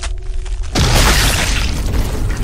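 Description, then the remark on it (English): A sudden, loud explosive boom erupts after a brief quiet stretch as the character Ebenezer Whitehead bursts into flames, followed by a sustained roaring, crackling blast that fills the rest of the moment without fading much. “Ebenezer Whitehead, he screams and says, No, I am the law! I am order! I am the rules! As he bursts into flames.”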